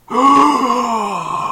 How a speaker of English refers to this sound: Gasp.